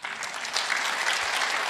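Steady applause from a group, a dense crackle of many hands clapping at an even, moderately loud level throughout, with no voices standing out.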